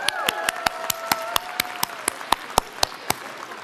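Steady applause at a commencement, made of sharp, evenly spaced claps, about four per second, clear, with a faint whining tone lingering underneath for the first couple of seconds.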